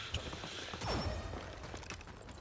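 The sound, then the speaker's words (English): A video game weapon reload: a quick run of mechanical clicks and a sliding metallic sweep in the middle, set over a constant low rumble of game noise with no voices. “I need to reload my weapon, you can check, sorry.”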